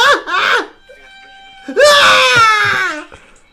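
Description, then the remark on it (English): Two shrill, high-pitched cries: a brief one first, then after a short pause a longer, louder wailing scream lasting over a second, harsh, with no talking. “The little, like, the scream.”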